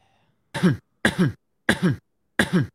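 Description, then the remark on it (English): A cough sound-effect drop plays four times in a steady rhythm, each a loud, two-part hack separated by brief silence. No one speaks over it. “That's a drop. What do you usually play it for?”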